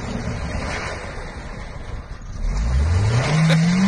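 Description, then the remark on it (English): A car engine revs hard as the car spins out trying to get out of a snowbank, its pitch climbing steeply in the second half as it strains, with a rough low rumble underneath throughout. No one speaks. “He's trying to get out of the snowbank.”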